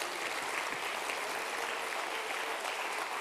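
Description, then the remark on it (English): A church audience claps their hands together unto the Lord in a steady, dense wash of applause that holds at an even level throughout, with no voices standing out above it. “Won't you clap your hands one more time unto the Lord?”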